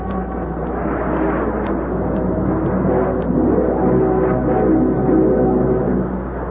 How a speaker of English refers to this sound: Listen. That jet of fresh, pure moisture stands for the new, all-new Raleigh 903 cigarette. It's moisturized to stay fresh longer.